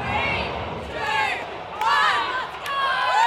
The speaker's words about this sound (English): Australia's Matildas versus England's Lionesses. The crowd goes wild as Australia's top scorer, Sam Kerr, charges, striking the ball into the goal.